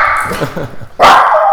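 A dog barks, starting with a few softer yips and then letting out one loud, sustained bark that fills the last part of the moment.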